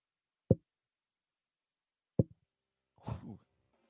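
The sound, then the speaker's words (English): Two sharp, thumpy taps of a hand on a microphone, spaced well apart, followed by a short, rougher burst of noise, demonstrating tapping versus smashing a like button. Quiet stretches sit between the hits. “Show me the difference between tapping the like button and smashing the like button with your hand on your microphone.”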